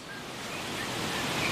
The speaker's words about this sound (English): The wind's thrashing through the tall rimu trees, which are dropping fruit everywhere.